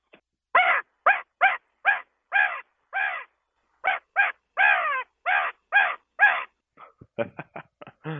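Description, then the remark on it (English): A person imitates a crow with their voice while turkey hunting, giving a long series of loud, harsh caws in a steady rhythm, then a quicker burst of short, choppy calls at the end. “I hate them too, but I'll go in there and I'll do a crow call.”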